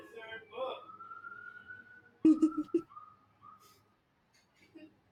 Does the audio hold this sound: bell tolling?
no